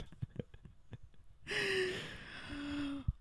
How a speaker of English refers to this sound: I can't tell if it's you breathing loudly or me into the mic recording.